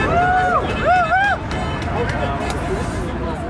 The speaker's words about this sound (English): So workers were already on the picket lines when I arrived. They were chanting, yelling. There was a lot of energy. There were cars zooming by and honking.